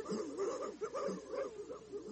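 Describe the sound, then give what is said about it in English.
Several dogs faced with a hyena yelp and whimper as they run off, a continuous, high-pitched tangle of cries with wavering whines rising and falling over about two seconds. “Look, the dogs don't know what to do about it. Oh, dear, they're running off.”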